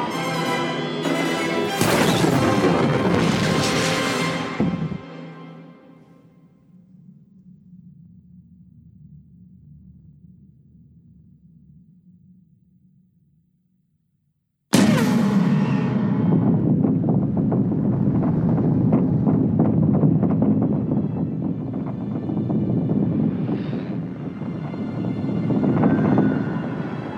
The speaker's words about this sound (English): We start with an exploding lightsaber and immediately cut to a starship flying at light speed through an entire fleet and a giant starship. And we get maybe the biggest explosion ever in Star Wars ever.